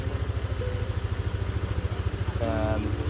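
Vehicles rumble along a street, their engines giving a loud, steady low throb with a regular pulsing beat, and a brief higher-pitched tone cuts in near the end.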